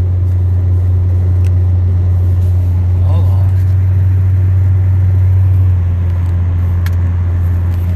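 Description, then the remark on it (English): A Ford car engine drones steadily and loudly throughout, a constant low rumble as if heard from inside the vehicle, easing slightly near the end, with a brief faint voice partway through. “This dang Fords, man. These cars ain't built for a lot, boy.”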